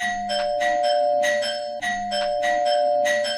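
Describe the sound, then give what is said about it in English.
A doorbell rings over and over in quick, rhythmic bursts, fairly loud, with a steady ringing tone running underneath and no one talking. “It wasn't much longer before the doorbell rang in typical Todd-like”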